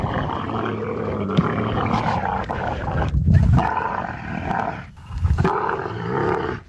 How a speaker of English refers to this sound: Camel mating noises kind of sounds like somebody's blowing bubbles in chocolate milk, doesn't it?